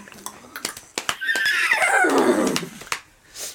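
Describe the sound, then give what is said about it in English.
A person vocally imitates a horse rearing up and whinnying: one loud, wavering neigh that starts high and slides downward for about a second and a half. Scattered clicks and breathy noises come before it. “And then the horse goes back comically on its... And it's, like, rears up and goes...”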